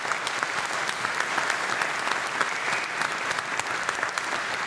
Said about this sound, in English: We are 10,000 miles away doing a Behind the Glass Live in Australia. It's unbelievable. What is happening? Everybody, I want to give you a round of applause. Welcome.